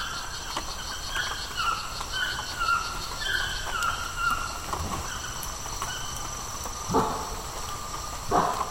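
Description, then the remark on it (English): Two brief, bark-like howler monkey calls rise near the end over a steady rainforest chorus of buzzing insects and chirping birds in La Selva Rainforest, Costa Rica. No one speaks. “No, it's probably a howler monkey. The males will call early in the morning, late at night.”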